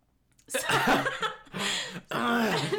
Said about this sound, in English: Sorry, I just, like, had to clear my throat.